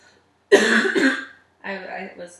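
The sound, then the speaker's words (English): A harsh cough bursts out loudly for nearly a second as someone tries to hold it in, then after a short pause comes a softer, voiced throaty sound, like a stifled follow-up cough. “I felt a cough brewing within my lungs. And I was trying to smuggle my cough.”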